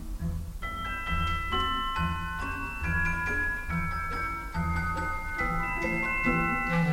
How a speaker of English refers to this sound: That beautiful bell-like sound ringing out above the orchestra is a celesta being played by someone sitting at a keyboard that looks a lot like a piano.